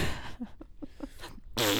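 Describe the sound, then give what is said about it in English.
A sputtering fart sound: a quick run of short, rippling puffs that ends in a louder, blaring burst of air, with no talking. “And then someone just comes along and they're like... Farts on it.”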